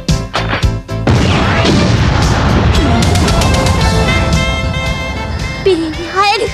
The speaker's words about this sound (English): There is another explosion. And then Yuri turns around. She turns in the direction of the explosion and says Kay's name.